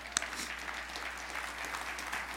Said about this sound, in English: Now, if we're going to applaud, let's do it together. Come on, let's do it.